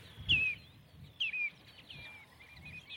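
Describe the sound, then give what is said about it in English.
Redshanks give two loud, clear descending whistles overhead, followed by fainter scattered chirping from a passing starling flock, with a low rumble of wind underneath and no voices. “Red shanks and a flock of starlings going overhead”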